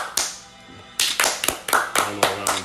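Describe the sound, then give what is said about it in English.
Hand clapping from a single person giving a round of applause: one sharp clap, a brief pause, then a steady, evenly spaced run of about seven crisp claps. “I'm going to give you a round of applause.”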